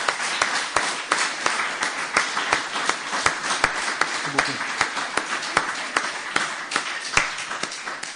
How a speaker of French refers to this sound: Je vous propose, comme on le fait normalement à l'issue de conférences, qu'on applaudisse déjà notre conférencier pour ce qu'il a dit une année.